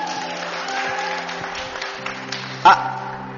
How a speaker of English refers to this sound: Ah, sir, I've seen you raise your hands. Come. Sincere. Let's clap for him.